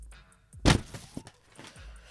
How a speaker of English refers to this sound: Can you hear the paper? I'm going to pull it out of the envelope now.